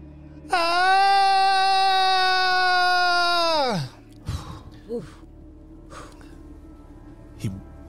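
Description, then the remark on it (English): A voice imitates a loud scream: one long, steady, piercing wail lasting about three seconds that sags in pitch as it cuts off, followed by a few short breathy gasps. “In his sleep, he hears, or awaking from his sleep, he hears a scream, a loud scream from a room down the hall.”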